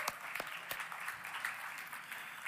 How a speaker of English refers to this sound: Give a round of applause for my boys again.